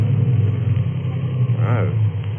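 A car engine, choked by the driver while driving at night, chokes and sputters with a rough, low, continuous rumble, fairly loud. A short vocal sound rises briefly over it near the end.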